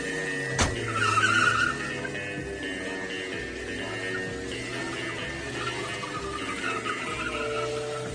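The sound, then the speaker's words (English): A sharp thud, then a brief high tire screech as a car accelerates away, its engine roar continuing steadily for several seconds. No voices. “The car, quickly!”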